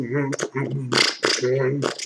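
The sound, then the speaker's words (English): A voice imitates the sputtering, unhealthy-sounding engine of an aeroplane in the sky, alternating buzzy hummed tones with bursts of spluttering, breathy noise in a loose rhythm, fairly loud for about two seconds. “I saw the aeroplane in the sky. Yeah. But it didn't sound healthy.”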